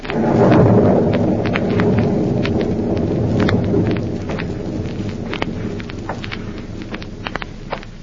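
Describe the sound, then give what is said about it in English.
A thunderstorm on a stormy night at an old house, the former hideout of Professor Horn in Illinois, with a deep rolling rumble of thunder that swells early and slowly fades, over steady rain and a scattering of sharp drip-like ticks, with no voices. “And now back to Counterspy, an eerie, stormy night at the former hideout of Professor Horn in Illinois.”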